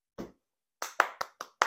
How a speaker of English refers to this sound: Round of applause, guys. Round of applause.